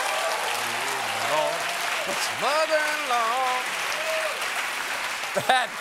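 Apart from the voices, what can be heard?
audience applause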